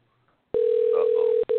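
signal or alarm, telephone line ringing

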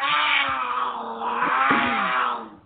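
animal, cougar growl

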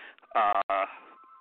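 household object, phone ringing

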